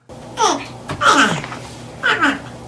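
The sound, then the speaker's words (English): A porcupine, a small animal, makes three short, whiny, high-pitched cries in quick succession, fairly loud, each wavering downward like a fussing baby, with brief pauses between them. “That's a porcupine, a small animal.”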